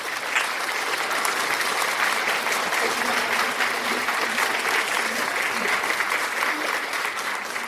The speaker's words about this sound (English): My brother, my sister, applaud for the Holy Ghost. Applaud for the Holy Ghost. Ma soeur, mon frère, applaudis pour le Saint-Esprit. Applaudis pour le Saint-Esprit au nom de Jésus-Christ.